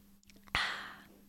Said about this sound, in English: I need a sip from my drink real quick. Don't mind me.